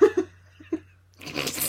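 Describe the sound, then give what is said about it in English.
A female cat clawing and ripping at a rug, a dense, raspy scratching that starts abruptly in the last half-second, after a few short breathy, laugh-like vocal bursts. “Nah, she's just ripping up the rug.”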